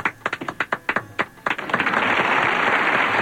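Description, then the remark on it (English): A few scattered, distinct hand claps quickly swell into a full burst of steady applause that holds loud and dense until the end. “Oh, give me applause.”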